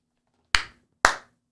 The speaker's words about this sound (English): A round of applause.